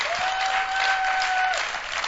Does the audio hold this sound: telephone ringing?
no